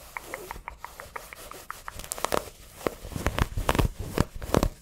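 Clothing fabric scratching and rustling during an ASMR bikini try-on haul: a quick, rhythmic run of soft rubbing strokes gives way to louder, irregular scrapes and crinkles. No one speaks.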